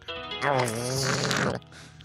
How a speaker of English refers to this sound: That's our intro. It's just gargling noise.